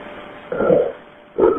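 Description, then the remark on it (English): Two harsh, guttural gasping breaths from an unconscious man, about a second apart, low and rasping, each a short loud burst with near-silence between them and no talking. “That's him breathing, though, that I hear?”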